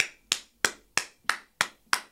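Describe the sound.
Six sharp hand claps in a steady, brisk rhythm, crisp with a slapping quality, each ringing off quickly before the next; no voices. The hands are clapped to imitate the sound of bodies slapping together during sex.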